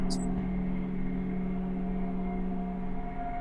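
A small motor hums steadily throughout, a low droning whir with a faint tonal whine, constant in loudness, opening with a brief high-pitched scrape as an automatic cat feeder dispenses food.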